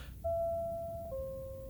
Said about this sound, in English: The door chime just rang, so someone else is here.